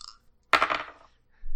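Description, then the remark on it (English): Dice rolled with advantage during a tabletop role-playing game clatter onto a hard table: one sharp, bright strike followed by a quick half-second of rattling that fades out, with no voices over it. “So we'll give you advantage on the rolls.”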